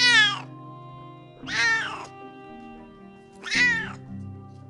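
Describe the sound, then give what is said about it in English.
A cat that wants to be fed meows insistently three times at roughly even intervals, each call loud and drawn out with a rising then falling pitch, and no talking in between. “God forbid I try to record this podcast before feeding my cat. He will interrupt to let us know he's very upset about that.”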